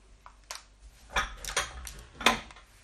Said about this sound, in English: And then next we're going to add 2 tablespoons of water. So that's it then. Okay, so right, what I'll do is mix it all into a bowl now.